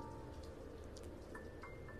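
Steady, soft rain falls outside in a continuous hiss with faint scattered patters, fairly quiet and even throughout, with no one talking.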